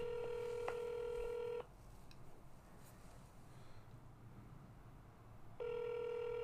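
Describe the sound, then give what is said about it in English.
A phone line's ringback tone purrs twice, a steady electronic burrr separated by a few seconds of quiet line hiss, sounding thin as if heard through a handset, as a telephone call rings before going to voicemail. “Well, it goes to voicemail, right? So it has to ring.”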